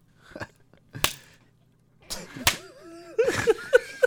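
A towel snaps against metal lockers in loud, sharp cracks, three or four irregular smacks, then a busier burst of slapping mixed with squeaky, voice-like yelps.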